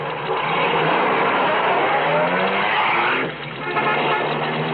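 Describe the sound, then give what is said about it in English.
A car with its lights off accelerates hard to get away, its engine roaring up in pitch with tires squealing. The loud noise runs nearly five seconds and dips briefly before surging again. No one speaks. “Step on it. You think he saw it? Just drive.”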